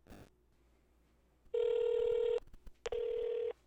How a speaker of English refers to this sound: And at the bottom of his email, which was amazing, was a phone number, and I'm going to call it right now. Let's see what happens.